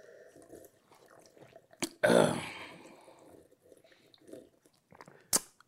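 A wet slurp of someone sipping water, a short noisy draw of liquid, framed by a couple of sharp mouth or cup clicks.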